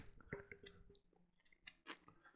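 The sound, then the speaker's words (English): Crunchy chewing of a crisp chocolate peanut butter snack, a quick run of irregular crackling bites and crunches with short pauses between, no talking over it. “You could kind of taste it, but you could just hear the crunch, so you know it's there.”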